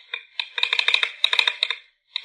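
A telegraph key of Samuel Morse and Alfred Vail's early telegraph clicks away in quick, uneven bursts, sharp metallic taps with a bright ringing edge, pausing briefly before a final click.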